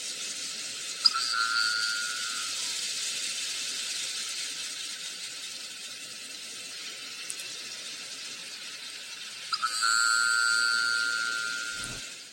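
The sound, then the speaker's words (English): Two minke whale boing calls over a steady underwater hiss: a brief twangy, buzzing tone first, then after a long pause a louder, longer one that fades out slowly. “So this is what the boing sounds like.”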